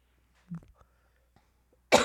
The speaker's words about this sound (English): I'm sorry, this is just gonna be a podcast of me coughing.